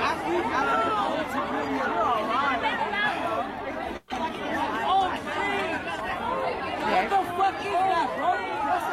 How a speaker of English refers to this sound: This is apparently UFOs over a football game, and multiple people are reacting to it. So it's getting a little loud with the yelling. I turned it down a little bit.